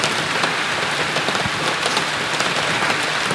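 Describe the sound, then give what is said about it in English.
Steady rain patters and hisses across a hard surface, a dense continuous wash of droplets with no voices or other sounds. “Or the rain.”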